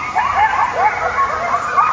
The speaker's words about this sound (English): our dogs are going crazy, you know, listen to this section where the dogs are really sounding off, and you can just see the frequencies.